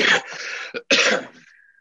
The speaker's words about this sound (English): Oh, I'm going to cough. Sorry.